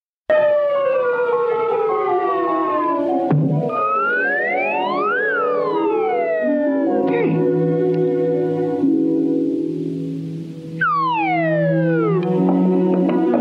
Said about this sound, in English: That's right, folks. It's the slide whistle. The slide whistle is the true protagonist of Gumby.